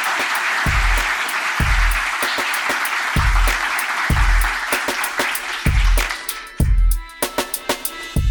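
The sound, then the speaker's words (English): An audience applauds a panel, a dense, steady crackle of clapping running throughout, with a regular low thumping beat underneath and tonal music coming in near the end. “And I think we need an extra round of applause, please, for this panel.”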